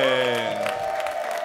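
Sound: audience clapping and cheering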